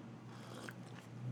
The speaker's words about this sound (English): Sorry, I had to slurp a little coffee there.